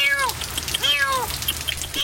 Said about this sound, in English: Finally today, a surprise under the hood. What is that sound? It's coming from that car. What could it be? It's a kitty trying to stay dry in the rain.